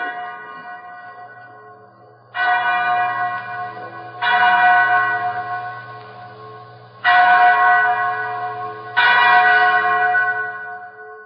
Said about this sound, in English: Mary, that's the chapel bell. Oh, Bob. Sounds like the Indian has reached his destination.